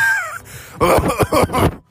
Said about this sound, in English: Little COVID cough ASMR.